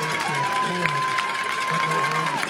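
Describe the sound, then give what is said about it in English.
A home stadium crowd at a football game roars steadily throughout, cheering on their team's defense: a dense wash of cheering with a long sustained tone riding above it while a voice talks over the noise. “Lumberjack faithful doing everything they can to cheer on the good guys on the defensive side of things.”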